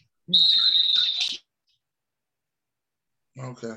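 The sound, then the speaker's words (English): A sharp, steady high-pitched whistle from a person rings out loud for about a second, then cuts off; after a brief silence, a voice begins speaking. “That was a perfect whistle, though, man.”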